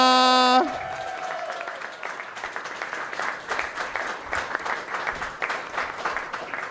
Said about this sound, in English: Round of applause for my great friend, Luke McGregor!